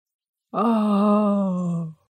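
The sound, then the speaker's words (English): A narrator performs a single drawn-out, voiced sleepy yawn, lasting about a second and a half, with a steady tone that sags slightly lower before trailing off. No words are spoken. “Oh, rice always makes me sleepy, she yawned, and put her head down on the first pillow.”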